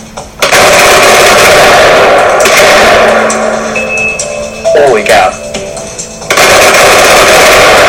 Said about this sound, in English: So converting this regular semi-automatic Glock into a fully automatic machine gun Glock by slipping in these parts. So that was like 90 seconds and you made a machine gun. Let's see how she shoots.